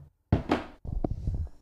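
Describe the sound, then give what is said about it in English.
A four-sided die (D4) being rolled, landing on a 2: two loud banging thuds, then a quick run of softer rattling clatters as it tumbles and settles, with no voices. “I rolled it. If you hear all the banging, I got a 2.”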